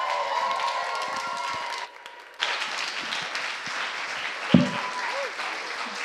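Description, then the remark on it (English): A large standing crowd applauds steadily with scattered cheers to welcome a woman speaker, a dense wash of clapping that briefly dips before surging back, with a sharp thump near the end. “Would you be upstanding and cheer”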